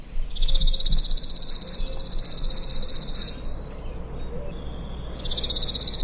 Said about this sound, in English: All right, here's the sound, the kind of mechanical sound of the chipping sparrow.